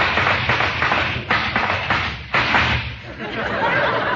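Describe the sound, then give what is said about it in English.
Rapid, rhythmic clip-clop of horses' hoofbeats, a steady run of hollow taps and thuds over a noisy, hissing background, with no talking. “Hark! Do I hear the sound of horses' hoofs?”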